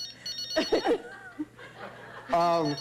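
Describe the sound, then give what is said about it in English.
A cell phone rings with a steady, buzzy electronic tone near the end, after a few short bursts of laughter from people. A low hum runs underneath throughout. “Oh, the phone is ringing.”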